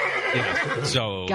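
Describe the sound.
A horse lets out a short, loud whinny, its shrill, quavering neigh rising and trembling before cutting off abruptly.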